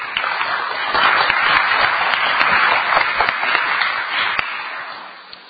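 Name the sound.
audience clapping applause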